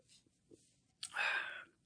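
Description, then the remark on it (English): A quiet slurp of someone sipping beer, a short airy hiss with a faint whistle lasting under a second, preceded by soft rustles and small mouth sounds. “Let me take another sip, but yeah, that sounds about right.”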